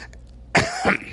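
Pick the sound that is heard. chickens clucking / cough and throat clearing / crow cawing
cough and throat clearing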